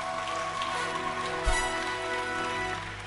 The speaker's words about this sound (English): Wow, clap your hands for Jesus.